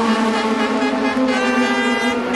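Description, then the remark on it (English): Racing cars, one of the Ferraris and several LMP2 cars, roar past a trackside fence at high speed, close to the fence. A loud, steady, high-pitched engine drone holds without a break for the whole moment, with no voices. “That's the one of the Ferraris, several of the LMP2 cars. Too fast to see which ones they were and too close to my side of the fence.”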